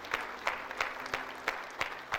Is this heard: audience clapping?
yes